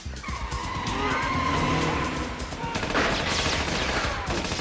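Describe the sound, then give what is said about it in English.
A BMW 7 Series sedan's tires squeal in long, wavering skids over a loud, roaring engine, with dense rattling and thumping noise underneath throughout, as the car is chased around a parking garage in the film Tomorrow Never Dies. “It's the BMW 7 Series. I think it's the only real, like, it's a sedan.”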